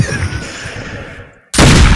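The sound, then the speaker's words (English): A fading, rumbling tail of gunshot sound effects gives way to a brief silence, then a loud, sharp burst of shots erupts and continues at full intensity. No voices are heard. “Oh, my gunshots are still going.”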